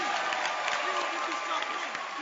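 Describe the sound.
A church audience claps steadily for one of the church's pastors, a dense, continuous wash of many hands with murmuring voices mixed in, holding an even loudness throughout.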